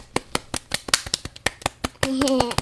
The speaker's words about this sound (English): That was really good. Clap.